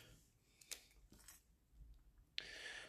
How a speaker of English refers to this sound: I'm sorry, I'm fiddling with chocolate coins. So if anyone's like, why is this crackling? I'm fiddling with like chocolate coin wrappers because I like chocolate coins.